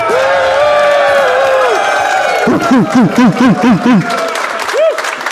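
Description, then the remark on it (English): A large live crowd in Boston, Massachusetts applauds and cheers loudly, with a long sustained whoop followed by a burst of rhythmic, repeated shouts over dense clapping. “What a crowd.”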